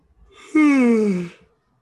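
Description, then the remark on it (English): A single yawn from a sleepy person: a soft breathy intake, then a loud voiced 'aaah' that slides downward in pitch for under a second before trailing off into quiet. “That was an actual yawn because I'm sleepy, but that's also how I felt about this episode.”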